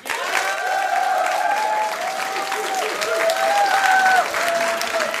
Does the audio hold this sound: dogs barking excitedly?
no